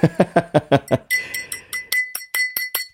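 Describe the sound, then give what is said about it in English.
Glasses clink together in a toast: a quick run of about ten bright, ringing taps, after a brief burst of rhythmic, laugh-like vocalizing. “But bro, like, you know how we do here at the Funkaholiks, we always do a cheers before we get into the shit.”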